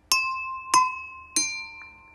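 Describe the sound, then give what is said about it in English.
Three glasses filled with water are struck one after another, each tap giving a bright, clear ringing tone that sustains and overlaps the next. No one speaks. “It's because of the gravity and how much water there is in there affects the tune.”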